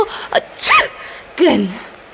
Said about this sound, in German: Zusammen mit der ständig niesenden Dame